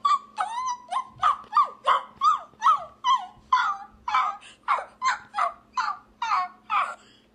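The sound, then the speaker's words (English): Someone imitates sad, whining shelter dogs: a steady string of about fourteen high, wavering whimpers, fairly loud, each rising and falling in pitch, with no talking. “I feel like I just walked into the Humane Society. Like, these dogs have been there for 10 years, no family, no fun, no life, and that was you”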